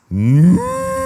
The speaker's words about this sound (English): What then is this bleating of sheep in my ears? And these cows.